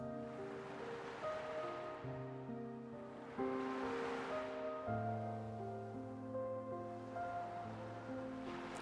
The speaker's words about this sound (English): The ocean waves swell, and the power of the feminine rises in me.